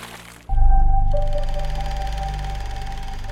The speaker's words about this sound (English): Or if you wanted a submarine to dive into the ocean, they might have a small mechanical sub plunge into a tank of water.